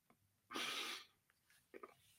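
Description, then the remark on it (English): A voice imitates someone blowing their nose into a hanky: one loud, breathy honking blast lasting about half a second, followed by a couple of faint sniffy, snorting sounds. “Then she kind of does something in her little hanky, and then she has to blow her nose, and she blows it like this.”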